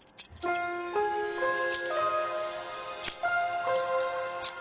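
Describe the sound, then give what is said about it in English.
A bunch of keys jangles in four bright, metallic bursts about a second apart, each like a toss and catch, over a soft, steady tinkling melody. No one speaks. “Maybe if I toss them, they'll help me think.”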